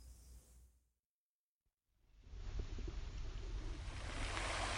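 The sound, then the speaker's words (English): Soft wash of waves gently lapping on a shore, briefly fading to silence before swelling back into a steady, continuous surf-like rush with no voices. “And as we listen to the sound of the waves gently lapping on the shore, let us remember and give thanks for his constant and unending love breaking over us.”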